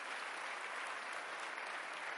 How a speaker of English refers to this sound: Let's give our pastor one more hand clap for that wonderful service.